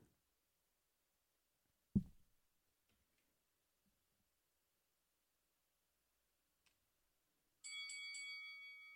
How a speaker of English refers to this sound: That was two bells, bitch.